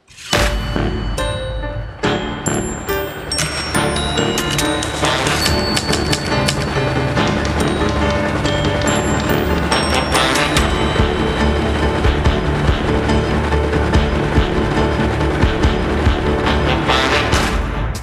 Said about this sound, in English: Yeah, I'm using typewriters as percussion instruments. The sound of keys clacking down on old-fashioned typewriters kind of stands in for snare drum effects.